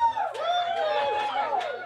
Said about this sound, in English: Wow, this crowd is officially on your side. You should hear the amount of chatter in this room. There's so many people right now turning to each other like, yeah, I've hooked up with a guy with a pee on his face.